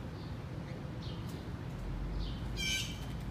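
Blue jay calls ring out outdoors, a few faint, scattered cries followed by one louder, harsh call near the end, over a steady low background rumble. No one speaks.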